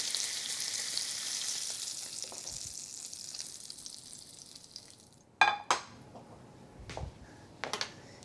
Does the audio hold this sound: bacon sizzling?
yes